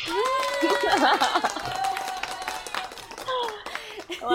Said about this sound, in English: So enough of me blabbing. Let's bring her in. Bring a big round of applause.